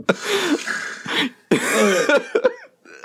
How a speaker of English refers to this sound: A cough. A cough is staying in. Maybe, I cannot believe that cough. That was insane.